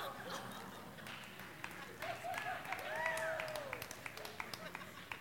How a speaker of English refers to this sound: Yeah, keep clapping.